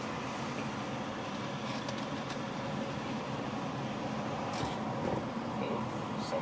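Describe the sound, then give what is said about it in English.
A steady, continuous rumble of traffic fills the whole stretch, fairly loud and unbroken, like vehicles rolling past with a constant low roar and no speech. “Traffic. Too many traffic.”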